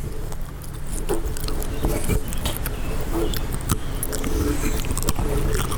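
A dog chews treats right up against the microphone, with loud, wet crunching and smacking in an uneven, continuous rhythm and sharp clicks of teeth throughout.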